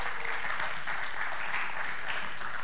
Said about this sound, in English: Let's cheer them on and the teachers as they leave. Woo!